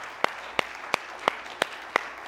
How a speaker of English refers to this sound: Come on and give the King of Glory a hand clap together tonight, please.